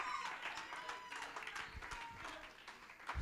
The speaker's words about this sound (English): Somebody else, clap your hands and shout with a voice of triumph.